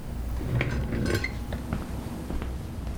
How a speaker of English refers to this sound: I'm pouring myself another cup. Can I interest you in a refill?